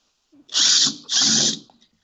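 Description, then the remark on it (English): A power drill whirs in two loud bursts of about half a second each, separated by a brief pause, with high-pitched motor whine. “Who's playing with the power drill?”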